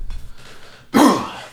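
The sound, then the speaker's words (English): A single loud cough or throat clear from a person with a cold bursts out after a moment of quiet, rough and harsh, then trails off quickly. “Now, before I actually get into the film, again, my apologies for the cough-related or cold-related cough and sniffles.”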